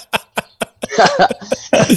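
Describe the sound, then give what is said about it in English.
A person coughs several times: three or four sharp separate coughs, then a rougher, longer fit of hacking coughs, loud and dry with no talking. “Bit of the spicy cough.”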